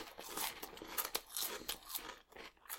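Loud crunching of a roasted hog-skin snack, with a rapid series of sharp, crackly bites and chews over about three seconds, no voices.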